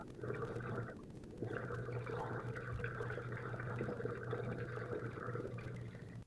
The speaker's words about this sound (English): I would... politely request someone to not sip on the straw.